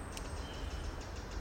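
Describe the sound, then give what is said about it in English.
A robin's alarm call in the distance, in woodland with brambles near a forestry track, raised because the bird has detected a person: faint, sharp high ticks repeated at a steady quick pace over a low, constant rumble of background noise, with no voices. “An alarm call in the distance there. Sounds like a robin.”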